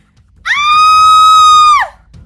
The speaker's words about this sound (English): who had been coming around, screamed.